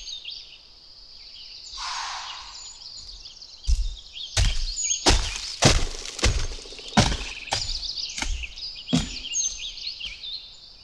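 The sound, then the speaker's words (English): A big mule deer runs by through the forest, hopping on all four legs at once: a burst of loud, irregular snaps and crunching thuds of twigs breaking underfoot, about nine impacts over several seconds, with birds singing steadily throughout. “big mule deer just ran by right in front of us.”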